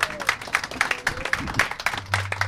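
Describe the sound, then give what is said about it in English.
An audience gives a last round of applause for performer Robert White, a dense, steady wash of many hands clapping that holds at an even level for the whole stretch, with no voices over it. “Ladies and gentlemen, last round of applause, please, for Robert White.”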